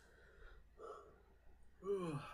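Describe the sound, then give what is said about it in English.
A breathy yawn: a long drawn-in breath followed by a brief voiced, sliding groan as it trails off, with no talking. “Yeah, sorry for the yawn.”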